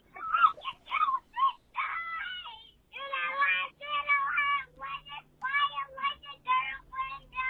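A dog whimpers and whines in high, wavering cries, broken by a few short, sharp barks early on, then long strained whines, close and fairly loud, with no talking.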